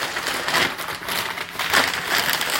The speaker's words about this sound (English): Rip off a piece of paper.